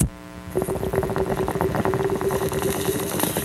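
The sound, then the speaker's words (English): Steady, dense gurgling bubbles run continuously for a few seconds, a rapid rattling churn with a faint sustained tone on top, water bubbling through a bong during a hit of weed. No one talks. “Can you give me a little bong rip right now”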